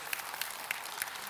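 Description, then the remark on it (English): Light, scattered audience clapping, a few distinct claps landing at a steady slow pace over a soft wash of hand noise, fairly quiet, with no one talking. “Let's see if you clap after this.”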